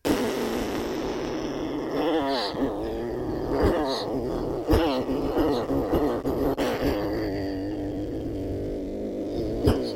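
A steady buzzing lip raspberry drones without a break, low and rough, its pitch wavering and sliding, with a few sharp pops and sputters along the way. No one speaks.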